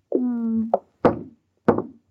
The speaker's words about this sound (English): Now what are you knocking for? I'm sorry, I thought I heard someone say come in. I beg your pardon. Lady, will you please stop knocking on those lifeboats?